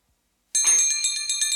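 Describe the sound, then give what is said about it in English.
After a moment of silence, bells burst into ringing: bright, metallic tones struck in a quick, steady pulse, their overtones sustaining and overlapping, loud. “Aw, oh, but what good does ringing bells do?”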